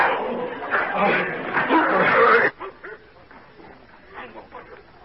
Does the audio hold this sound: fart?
no